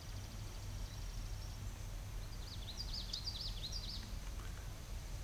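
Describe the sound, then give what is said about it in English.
A common yellowthroat warbler, recorded near water, sings a short burst of quick, repeated rolling phrases, faint, over a steady low background rumble with no voices. “That sounds like a yellow throat.”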